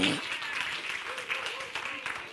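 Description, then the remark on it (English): An audience at Damascus Road Church claps together for a speaker being invited up, a steady, dense wash of applause that holds for a couple of seconds, with faint voices mixed in beneath the clapping. “We've been, this fall, you can clap for him.”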